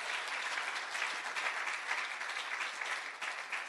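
A large church audience applauds and cheers, giving praise to God, throughout: a dense, steady wash of clapping that holds at an even, fairly loud level with no talking over it.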